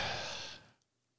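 A single close, breathy yawn, a long airy exhale that trails off after about half a second and leaves near silence, with no talking.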